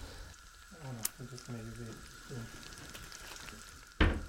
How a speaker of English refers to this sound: Gonna fry the sage in the butter and then put the gnocchi. Douse. Just for a minute.